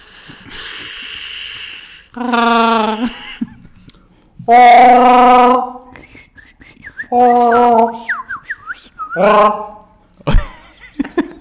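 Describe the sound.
Warbling, whistled chirps imitating either Arturito (R2-D2) or the little toy birds sold at fairs: several sustained buzzy tones alternate with quick trilling squiggles, with breathy sounds between the bursts.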